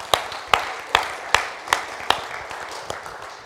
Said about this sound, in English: Let's praise him with our applause this morning.